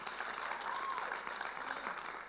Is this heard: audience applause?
yes